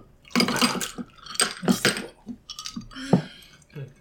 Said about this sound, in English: A lot of clinking going on here, guys. I'm going to edit it out.